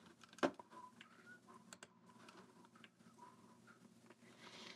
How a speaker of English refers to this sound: You know what? Let me write it down in pen, actually